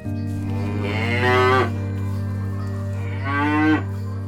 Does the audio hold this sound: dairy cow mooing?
yes